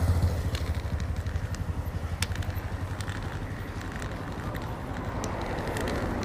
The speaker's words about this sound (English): Could that be a bus? No, it's a motorcycle.